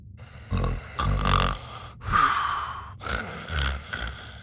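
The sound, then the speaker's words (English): A person fakes snoring, with a series of exaggerated, breathy inhale-and-exhale snorts repeating in an uneven rhythm, fairly loud. No words are spoken. “Dallas was pretending to snore, and the blob with eyeballs sitting on his shoulder jiggled with laughter.”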